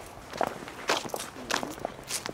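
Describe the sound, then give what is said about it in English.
Footsteps walking down stairs in a 175-acre garden cemetery in greater Boston, on the way to Charles Sumner's gravesite, a series of soft, irregular thuds and scuffs spaced roughly half a second apart, fairly quiet with no talking over them. “Here, we'll go down these stairs and cut through.”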